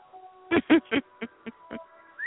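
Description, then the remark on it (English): A pet chicken named Salty squawks loudly in a rapid series of six harsh calls, the first three long and strongest, the last three shorter and softer, over a faint steady hum. “Screaming chicken, you're supposed to be in bed.”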